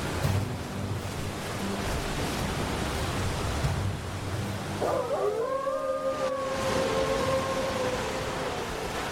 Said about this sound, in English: Wolves? Okay. There's a lot of wolves. Oh shit, there's like 4 wolves.